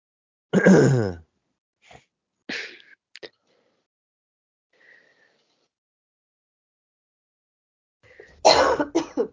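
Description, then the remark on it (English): A forceful sneeze bursts out, followed by a few faint sniffs and breaths in a quiet pause, then another loud, explosive sneeze at the end. No one speaks. “Bless you.”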